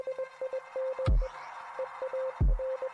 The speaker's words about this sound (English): As soon as our encounter with him begins, we hear a bunch of beeps and boops.